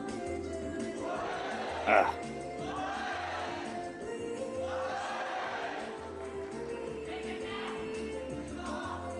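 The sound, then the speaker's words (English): A Japanese crowd cheers and shouts at a trick in a steady, dense roar of many overlapping voices, with one sharp, louder burst of excitement early on before the noise settles back to a constant level. “Yeah, Japan crowds are the best.”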